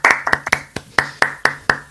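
Applause made of sharp, evenly spaced claps, about four per second, with a faint steady hum beneath. No one speaks over it.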